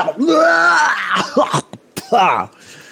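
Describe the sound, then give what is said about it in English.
A person loudly acts out a fit of wet, gurgling coughing and throat clearing, as if clearing blood out of the lungs: a long, strained, groaning heave followed by a few short, harsh hacks, without words. “And you coughing and clearing all of the blood out of your lungs.”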